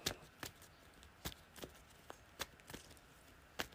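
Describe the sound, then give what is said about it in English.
A deck of cards being shuffled during a card game, a series of sharp papery riffles and snaps spaced irregularly over a few seconds, fairly quiet with no voices. “So let me shuffle this up.”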